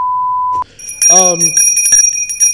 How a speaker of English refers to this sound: Well, I didn't hear the bell.